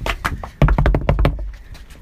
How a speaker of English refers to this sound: Stepping up to the next knock on the door.